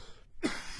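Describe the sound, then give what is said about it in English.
A single sharp sneeze bursts out after a brief hush, a loud breathy blast of noise that tails off quickly, followed by a short vocal catch at the end. “Bless you.”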